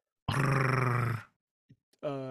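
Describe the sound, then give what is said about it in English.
A voice imitates a creature's growl: a long, low, rough rumble lasting about a second, then a couple of tiny clicks and the start of another gravelly vocal growl. “Right, so the cell to the right of the cell you just came out of, you hear like a growling. Something down here has vocal cords.”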